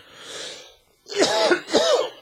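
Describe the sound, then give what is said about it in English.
A breathy intake is followed by two harsh coughs in quick succession, loud, with no talking. “However, per the normal course, the minute I start talking, I have to cough a million times.”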